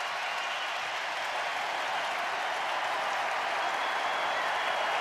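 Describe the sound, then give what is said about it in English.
A large crowd at Chase gives a sustained, roaring ovation for Klay Thompson's return with the Warriors against the Cavs on January 9th, a dense wash of clapping and cheering that holds steady and swells slightly louder toward the end as Klay moves his arms to get more noise, with no talking over it. “listen to the ovation for Klay.”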